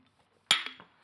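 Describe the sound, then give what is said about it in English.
Beer glasses clink together in a bright, ringing toast over a sunny evening beer: one sharp strike at first, followed by two quick lighter taps that ring out and fade, with no talking. “Shall we clink?”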